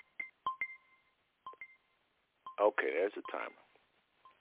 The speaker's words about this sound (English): Okay, there's the timer.